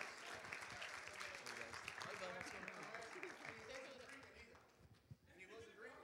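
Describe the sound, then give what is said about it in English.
A church crowd applauds steadily to congratulate a family on March 17th, many hands clapping in a dense, continuous patter that holds for several seconds, then thins slightly near the end with some voices mixed in. “And could we give them just a great big hand clap today?”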